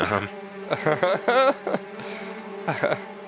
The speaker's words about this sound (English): Oh, no. Now you have a swarm of bees emerging from this, trying to figure out why the fuck their nest just got busted open.